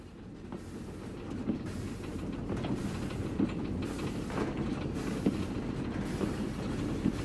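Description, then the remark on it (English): A train heading to Boston rolls steadily along the rails with a continuous low rumble, punctuated by regular clacks from the wheels passing over track joints, heard from inside the carriage. “This is day 3 of being on this train, heading to Boston.”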